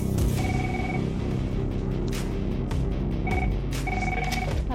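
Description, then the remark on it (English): A telephone rings in short electronic bursts, one early and then two more toward the end, over a loud, steady rumble of low background noise. “That lady could be ringing them now.”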